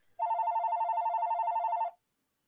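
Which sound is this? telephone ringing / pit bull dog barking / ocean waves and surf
telephone ringing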